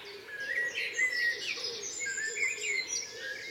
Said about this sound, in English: But as you can hear, it's a lovely dawn. Nothing too extraordinary singing. There's blackbird, song thrushes, the wren, a couple of wrens, pheasant.